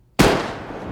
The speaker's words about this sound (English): There's a moment's silence. Time freezes as no one dares to move a muscle. Then, the sound of a single bullet cracks through the air.